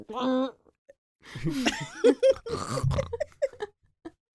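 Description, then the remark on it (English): A short, throaty burp with a squealing, pig-like edge stands out, followed by bursts of laughter and excited vocal noises. “Do you ever burp and it sounds like a piggy?”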